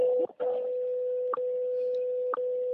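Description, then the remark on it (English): Time signal station audio over a phone line: a steady, unbroken mid-pitched tone punctuated by short clicks about once per second, with a brief muffled disturbance near the start. “Here we are listening to WWVH and me echoing back in a very weird way.”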